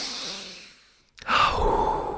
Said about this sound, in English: Feeling stressed this morning? Well, you could try, you know, deep breathing.